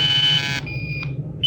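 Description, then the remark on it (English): An automatic radio sender signal from the craft Star Cloud, switched on so it can be tracked: a loud, steady electronic tone that buzzes harshly, then drops to a thinner, purer whine before the buzzy tone returns, all over a low hum. “We're switching to the automatic sender now so you can track us in.”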